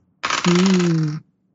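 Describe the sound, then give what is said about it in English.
A burst of dice clattering and rattling for about a second as they are rolled for a history roll, fairly loud, with a low steady hum-like voice tone running underneath before it stops abruptly. “Mr. Pell would probably be rolling on this too. I'm my dice are hot.”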